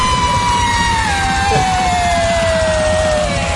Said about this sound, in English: Oh, so you were screaming along to that song. Yeah. Okay, I thought this is just a minute of you screaming.